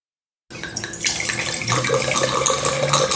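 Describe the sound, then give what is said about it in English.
Wine is poured into a glass, a steady gurgling splash that starts abruptly and fills for a few seconds, its pitch shifting as the glass fills. No voices. “I don't know if you could hear in the background, but I've poured myself a little bit more about twice now.”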